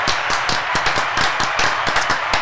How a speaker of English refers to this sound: So thank you guys so much for doing that. I think that's worth an applause right there for them. Yeah, I think so.